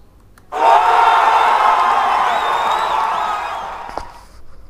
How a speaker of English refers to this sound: This is for gold cheer, but in the first, not gold cheer.